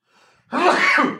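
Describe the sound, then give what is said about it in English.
A single loud sneeze: a soft intake of breath, then a sudden forceful burst that trails off after about a second. No talking. “Bless you.”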